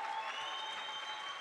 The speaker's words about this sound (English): Come on, clap your hands.